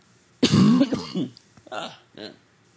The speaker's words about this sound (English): All right, got a cough here.